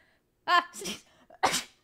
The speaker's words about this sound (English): Fuck, my immersion! Bless you. Bless your sister. Cinna bursts into sneezing. That technically could be in character, because it was only one.